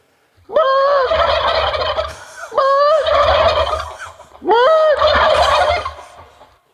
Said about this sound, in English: I just got out of the truck and it was cool and crisp, and all I heard was like just like the small birds. And then I heard the majestic call of the turkey.